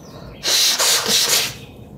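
Someone blows their nose after turning a device's radio off to mute themselves on a broadcast, one loud, breathy burst lasting about a second, with a few rough pulses in the rush of air before it fades back to quiet.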